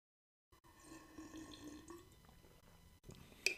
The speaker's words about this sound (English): I just need a little water here.